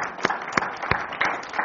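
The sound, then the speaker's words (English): A crowd applauds together as a clap offering to the Lord after a prayer at a morning service, in a dense wash of clapping, with sharper claps landing in a steady rhythm about three times a second. It is moderately loud, and no one speaks. “Let's give the Lord a clap out for this morning.”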